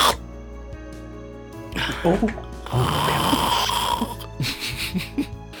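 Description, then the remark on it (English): Heavy, rasping snoring from a sleeping man, loud, comes in irregular bursts with a long rattling snore in the middle, broken by quieter pauses between breaths. “In fact, you hear some heavy log sawing coming from his nasal passage throughout the night.”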